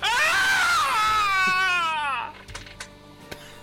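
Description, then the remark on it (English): A loud, high-pitched voiced scream of pain from the character Moloch as he is bitten in the crotch, strained and wavering for about two seconds before cutting off, followed by a few faint clicks and rustles. “Chomps down through this dick, and Moloch screams this high-pitched scream of pain.”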